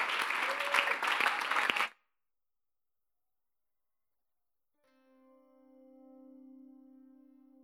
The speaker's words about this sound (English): This morning, it is my honor to invite our one and only Papa of the house with a round of applause.